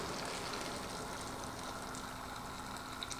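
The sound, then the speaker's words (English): Boiling water pours steadily into a container, filling it up to the line; a continuous rushing and splashing that holds an even level for the full few seconds, with no voices. “So here we go, fill it up to the line.”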